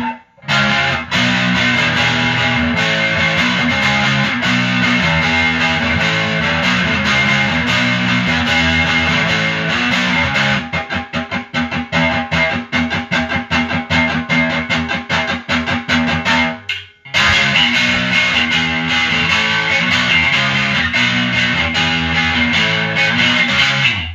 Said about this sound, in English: It kind of has a weird classic overdrive pedal sound, but it's still a distortion. It can still rock, so I dig that.